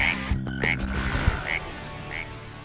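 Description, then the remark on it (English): A frog croaks in four short, bright chirping calls spaced unevenly over a couple of seconds, clear above a low rumbling background, with no talking. “And that frog got some big air.”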